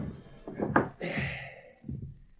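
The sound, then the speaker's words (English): A drawer is pulled open: a hollow wooden thunk, a second-long scraping slide, then a soft thump as it stops. No one speaks. “Look in this drawer.”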